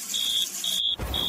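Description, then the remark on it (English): A smoke alarm, set off by a smoking toaster sandwich maker, shrieks in loud, evenly spaced high-pitched beeps, three bursts in quick succession, over a rough background hiss that swells briefly near the end. “Can't you do something about that bleeding alarm?”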